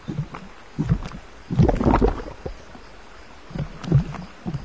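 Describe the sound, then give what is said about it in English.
Oars from a boat dip and pull through river water in a loose rhythm, with soft splashes and a louder swirling stroke in the middle, and no voices. “Said the river as oars dipped in and out of the water.”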